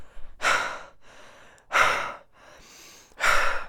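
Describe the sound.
Heavy breathing from about 20 guards riding up in a gold lift, three loud breathy exhales roughly every second and a half with quieter inhales between, no talking.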